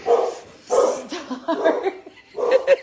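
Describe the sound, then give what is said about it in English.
Dogs bark at a UPS delivery driver delivering something, in about four loud bursts over a few seconds, with short pauses between them and some yipping, whiny edges to the barks. “Oh, UPS guy is delivering something, so dogs are not happy.”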